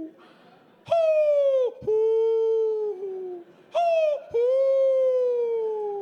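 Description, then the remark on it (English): Two long, sliding hoots from a human voice imitating an owl to call to an owl, each starting high and gliding down into a sustained tone, loud, with a brief break in the middle. “We're talking to an owl.”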